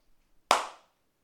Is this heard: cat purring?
no